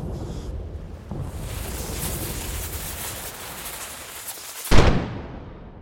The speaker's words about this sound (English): All right, so you heard in the background, we had waves crashing against a ship, we had cannon fire, we had the slow creaking of the wood on deck, we had them coming down the stairs and then delivering their promo.